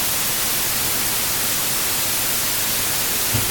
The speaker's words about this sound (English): This whole white noise is so loud. Is it really? It's not loud. Dude, it's so loud. Like, dude, try this in your ear. It's crazy!